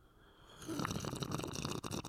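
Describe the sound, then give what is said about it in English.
A soft, steady breathy rush, like blowing across a hot cup of coffee before a slurping sip, rising after a brief quiet start and continuing for over a second with no talking. “Let's blow on it together. Yeah. Some ASMR. I'm nice. Coffee drinking. A nice little sip.”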